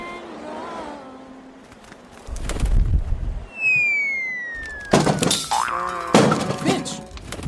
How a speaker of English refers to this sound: You just stopped flapping your wings and hit the ground and splat! You're lucky you're not a pancake.